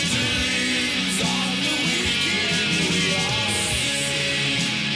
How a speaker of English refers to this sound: very wizard painted on the side of a van style rock. Yeah. It's weird. This is like frog grunge. Yeah. Or vice versa.